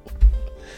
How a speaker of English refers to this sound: Oh my God. Bless you.